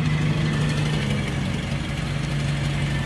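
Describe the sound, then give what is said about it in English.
The engine of Rory's own car idles steadily, a continuous low rumble with a droning hum that holds constant throughout, with no voices. “Admire the car, Rory's own car, listen, well done.”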